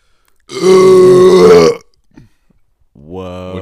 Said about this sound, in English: I need to be part of the burp off as well.